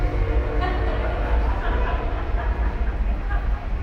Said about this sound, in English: Train. Awesome.